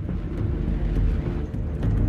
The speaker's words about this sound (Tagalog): Sumakay ito at pinaharurot na ang sasakyan.